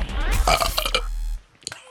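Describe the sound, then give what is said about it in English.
A loud, drawn-out burp rumbles for more than a second, then stops abruptly, leaving near silence broken by a brief faint noise. “It was very belchy.”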